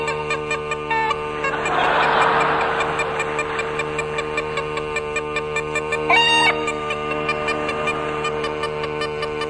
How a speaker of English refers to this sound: They'd be frightening the hens next. Now the hens.